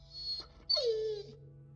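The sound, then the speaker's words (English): A red setter puppy named Pat whimpers: two thin, high-pitched whines, then a longer cry that slides down in pitch. A faint steady hum sits underneath, and no one speaks. “She lay there, bedbound and broken, cuddling Pat, her red setter puppy.”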